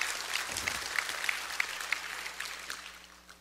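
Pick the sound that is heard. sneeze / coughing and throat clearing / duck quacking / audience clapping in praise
audience clapping in praise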